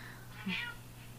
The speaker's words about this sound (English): I hear an angry cat. I hear him wow. It's my cat.